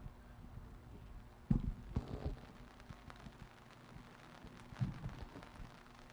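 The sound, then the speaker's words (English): Steady outdoor rain hissing softly, with scattered louder taps and thumps around it and a low constant hum underneath; no one speaks. “It's raining.”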